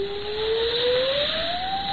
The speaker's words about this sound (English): What's that? What? The cray. Tis but a whistling of the wind. No! Listen. This sounds like the keen of a woman.